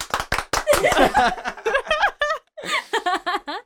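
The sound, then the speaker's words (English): A few hosts clap their hands in quick, uneven bursts, mixed with laughter and chatter that soon take over. “Everybody clap your hands.”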